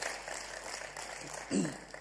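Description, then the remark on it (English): Steady crowd applause for a man who has been drumming and rapping crackles throughout at an even, moderate level, with a brief voice-like shout rising over the clapping near the end. “Yeah, clap for that guy.”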